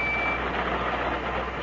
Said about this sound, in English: What the hell is that noise? Oh, sorry. I've got a pocket alarm watch, and it keeps trying to tell me something.